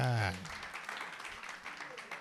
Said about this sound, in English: Clap for yourself.